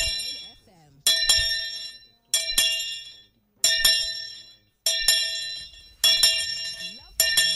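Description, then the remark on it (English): A bright, metallic bell is struck seven times at a slow, steady pace to mark Bishop Hassan Kuka's 70th birthday, each loud clang ringing out and fading before the next. Faint voices murmur underneath between strikes. “The bell has gone out, and it went out louder than Big Ben in London. seven times, signifying 70 years.”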